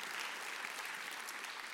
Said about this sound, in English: Give the Lord a hand for that as well. Nothing wrong with clapping.